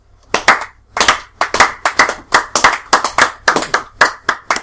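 Hand clapping in a steady, brisk rhythm, roughly a dozen sharp, loud claps in a row with short gaps between them, and no talking.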